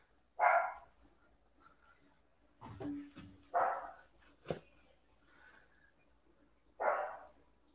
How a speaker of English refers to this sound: What's your dog trying to say? I don't know, man. She barks at like every little thing.